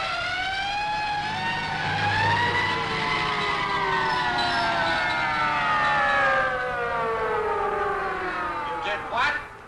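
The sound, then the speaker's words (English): A loud police siren wails continuously, its rising and falling harmonic tones sweeping and then dropping in pitch as the vehicle passes by, with traffic rumble underneath. “I guess I turned in a false alarm. A fire hose, eh? Here come the police.”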